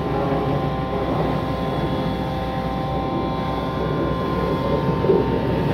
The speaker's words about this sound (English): Vacuum truck. There was some backhoe drilling, breaking up concrete earlier. Two vacuum trucks within 20 paces.